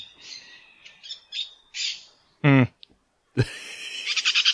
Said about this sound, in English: Which of the following birds do you think that is? Black grouse, white-winged parakeet, or northwestern crow? It's a white-winged parakeet. I think you'll find. That's right. It is the white-winged parakeet. Good ear.